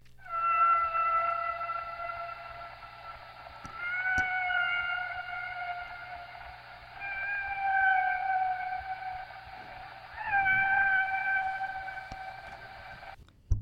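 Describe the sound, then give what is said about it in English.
A male humpback whale sings a courtship song: long, rising and falling tonal moans in four drawn-out phrases, steady and fairly loud, with no other sounds around them. “The next sound you'll hear is a humpback whale male singing a courtship song.”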